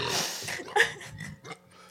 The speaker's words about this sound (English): Oh, edit that out. Fuck. Oh, my God. I just burped away my sins, bro. That was not cute.